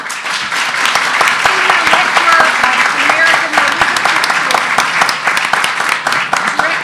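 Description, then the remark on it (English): An audience at an HDS Alumni Council Gomes Honors presentation bursts into sustained applause for an honoree, a dense, steady wash of many hands clapping at an even loudness for several seconds with no voices rising above it. “Ladies and gentlemen, please join me in a hearty round of applause for Gomes honoree”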